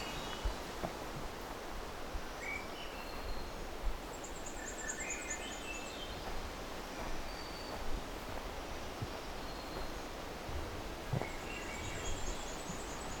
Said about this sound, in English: Looks like there's also a black and white warbler here somewhere. I'm hearing that very thin black and white warbler song.